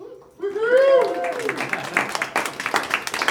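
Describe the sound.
A voice rings out with a rising, sustained call, then a crowd breaks into steady applause as a vote for the pick Top Chef, many hands clapping in a dense, crackling patter that carries on to the end.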